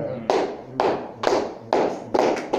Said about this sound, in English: Oh, the way you are clapping, I seem like you just.